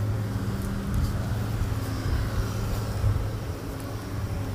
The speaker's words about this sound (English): Hear them moving around there. Tractor going. Gee, it's a backhoe is what it is. Much bigger than just a tractor.